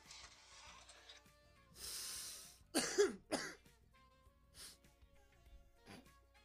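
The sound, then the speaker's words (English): A few harsh coughs and throat-clearing bursts from someone with allergy-season sniffles, preceded by a breathy sniff, with short gaps between them and no talking. “Sorry guys, it's fucking allergy season.”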